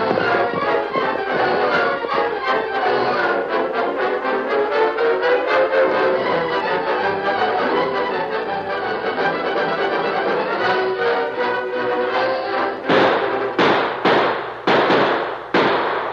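Gunshots crackle in a dense, rapid barrage during a gunfight at a ranch, the sharp reports overlapping almost continuously before breaking into a few loud, separate bangs at the end. No one speaks.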